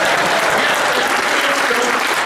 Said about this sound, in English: clap your hands for your Steelers.